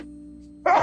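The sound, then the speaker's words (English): After a near-silent hum, one abrupt, loud sneeze bursts out at the very end, sharp and breathy, cut off almost as soon as it starts. “Excuse me. Bless you.”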